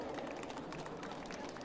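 An audience applauds the winner, Stina Jackson, as she is called up, with dense, steady clapping that holds an even level throughout, many hands blending into a continuous patter with no voices on top.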